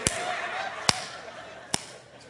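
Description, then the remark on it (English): Three sharp, crisp slaps land in a steady rhythm, each a little under a second apart, loud over a faint, hissy background with no talking, as a boy is spanked on the behind. “And the beautiful sound of rhythmic slapping.”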